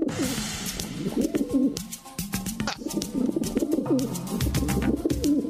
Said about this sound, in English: Okay, pigeons. Constantly.